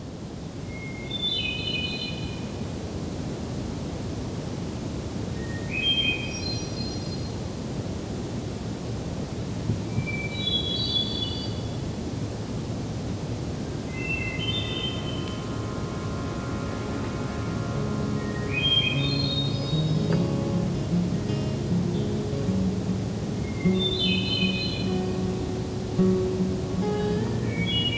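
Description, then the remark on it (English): A hermit thrush sings six or so flutelike phrases, each a held note rising into a quick shimmering flourish, spaced a few seconds apart over a steady low outdoor rumble. “We'll come back to this Canada warbler in a future episode, and for now, we'll shift focus to the species known as the hermit thrush.”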